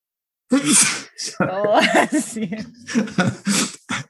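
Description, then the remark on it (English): A loud sneeze bursts out, followed by a few breathy, voiced gasps and chuckle-like sounds, with no clear speech. “I could say, gee, I'm sorry, I didn't mean to sneeze, but I'm not going to make an excuse.”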